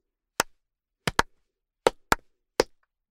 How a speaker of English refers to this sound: When I clapped, my hand made a fart noise.